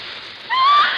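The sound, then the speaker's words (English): Liquid being poured onto a stain on a dress to remove it: a soft, hissing trickle that swells into a louder, steady splashing stream halfway through, with a thin whistling tone riding on top. No voices. “One drop of this stuff and it's gone. I just pour it like this.”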